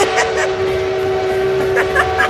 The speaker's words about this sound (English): Oh, I hear that train a-coming. It's coming around.